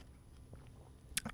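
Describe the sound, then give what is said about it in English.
A quiet sip of a drink: one short, wet slurp near the end, followed by a faint swallow, against a low, steady background hum. “Sips drink.”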